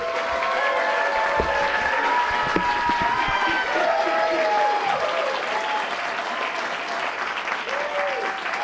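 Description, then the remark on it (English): Loud, sustained audience applause for comedian Kevin McDonald fills the whole stretch, a dense wash of many hands clapping together, with scattered whoops and cheers rising above it. “So, ladies and gentlemen, please give a warm round of applause for the no longer funny Kevin McDonald!”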